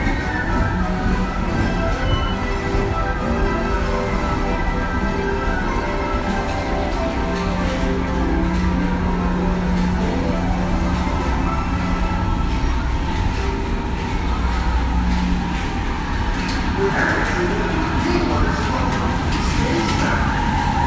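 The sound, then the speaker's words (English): A loud, steady rumble of a Space Mountain ride car full of people rolling along its track, with rattling and clacking throughout and faint voices mixed in beneath the continuous mechanical noise. “Riding by a car full of people that are about to embark on Space Mountain.”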